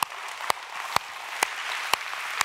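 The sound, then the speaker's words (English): An audience claps their hands, a dense wash of overlapping claps with sharp louder claps landing in a steady beat about twice a second. No one speaks over it. “Yeah, no, you can clap. That's good. Everybody put your hands together.”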